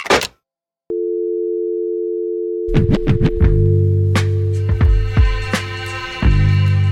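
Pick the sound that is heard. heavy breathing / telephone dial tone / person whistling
telephone dial tone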